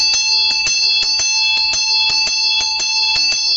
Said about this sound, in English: So it feels continuous. The bell ringing feels like a continuous ring.